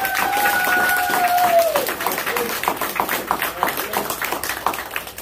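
A church audience applauds a brother to thank him for his service this month, with dense, steady clapping throughout. A held tone sounds over it at the start and glides downward before fading after a couple of seconds, while the clapping continues.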